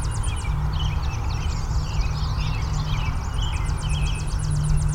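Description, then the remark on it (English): A Tennessee warbler sings rapid, high staccato trills at the start and again near the end, with other birds chattering throughout over a steady low rumble of background noise. “You can really hear that Tennessee warbler.”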